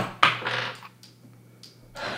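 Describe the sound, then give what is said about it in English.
Chord dice clatter and roll across a surface in a few quick, rattling bursts, with brief pauses between, moderately loud with no voices. “All right, well, yeah, go ahead and grab your chord dice since the headmistress is asking y'all to recant your tale.”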